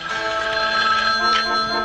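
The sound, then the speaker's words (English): A telephone bell rings continuously and loudly beside Lily and Grandpa as Herman dials from a phone booth, a bright metallic jangle with steady sustained tones filling the whole moment, with no voices. “We cut to Lily and Grandpa right by the phone when it starts ringing, and that's when we get the following clip.”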